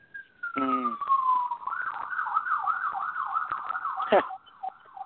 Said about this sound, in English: The sirens are... Right. One of the luxuries of living in this city. Yeah, Manhattan life.